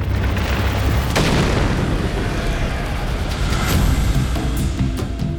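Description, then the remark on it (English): A heavy, continuous rumble of a massive boulder rolling down from a mountain peak and crashing, deep and loud throughout, with sharp cracking impacts breaking through the roar at irregular moments. “It rolled faster and faster until it crashed into Orisamala.”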